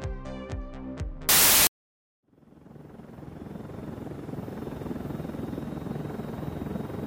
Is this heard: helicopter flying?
yes